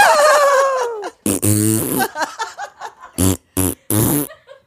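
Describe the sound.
A loud fart, played as Mozart's fart in a discussion of the film Amadeus, starts as a long squeaky whine that slides downward, then breaks into several short, buzzy sputtering blasts separated by brief pauses.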